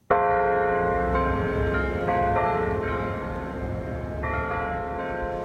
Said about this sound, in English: the bells every morning from the church, from the abbey in the back where the monks live